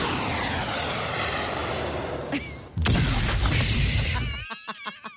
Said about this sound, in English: And when you mess with society's babies, we're coming for you with the bunker buster. Yep, here we go. Calling the airstrike.